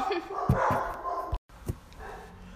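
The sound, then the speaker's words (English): Dogs bark after hearing somebody outside and an alarm system, in a short, irregular volley: a few sharp barks close together, a brief silence, then one more bark, with a muffled background. “we had to wait for the dogs to stop barking”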